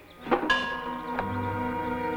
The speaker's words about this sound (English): The clank of the bell as he reaches for that hatchet